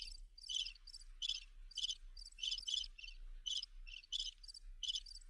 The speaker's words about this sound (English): Oh, there's the crickets. Wait. I've got crickets. 1 second. Hang on. They're here somewhere. Just got to find them.